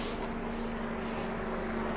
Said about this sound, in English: Helicopter going over above, cyclists below.